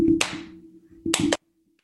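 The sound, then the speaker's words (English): Sharp hand claps: one clap with a lingering tail, then a quick pair of claps a second later, over a steady low hum. No one speaks. “Are you clapping?”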